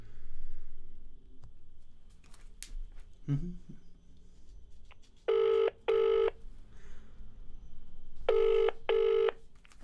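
A telephone rings with an incoming call from a father who was sent to the garden to get better signal: two loud double-burst rings a few seconds apart over quiet, preceded by a few faint clicks and knocks.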